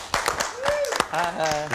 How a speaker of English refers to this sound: I love that you're Oscar nominated and you get a smattering of applause. That sounds about right. That seems right. Seems appropriate.